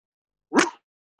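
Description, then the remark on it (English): A guest does a single loud, rough imitation of a dog bark, his signature bark before leaving a live video, one short burst from a human voice, followed by a faint brief trailing sound. “Yo, can you bark before you bounce, bro? That patented bark, bro.”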